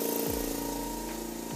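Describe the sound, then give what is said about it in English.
An air compressor motor kicks on to build up pressure again, humming steadily with a low, even drone and a layered mechanical buzz, holding loud and constant with a slight pitch dip near the start and end; no one speaks. “This air compressor is going to kick on so it can build up pressure again.”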